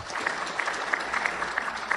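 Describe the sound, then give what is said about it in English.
An audience applauds to vote that the item about the Bronx Zoo displaying the missing link is the fiction: a steady wash of many hands clapping at a moderate level, with dense overlapping claps and no voices standing out. “And if you think the item about the Bronx Zoo displaying the missing link is the fiction, applaud.”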